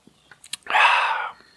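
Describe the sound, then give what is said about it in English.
A single slurping sip of a Bubbl'r Lemon Lime Twister sparkling drink, a breathy hiss lasting under a second, preceded by a few soft mouth or can clicks. “Yep, that's a 1 out of 10. Not even going to have a second sip.”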